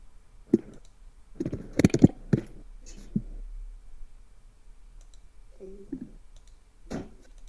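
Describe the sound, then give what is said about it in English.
Sparse clicks of keys being typed on a computer keyboard: one tap, a quick cluster of several strokes, then a few isolated taps, with a brief low murmur partway through. “Keyboard. I think I'm done with.”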